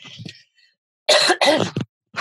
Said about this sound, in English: Excuse me, I just need to cough.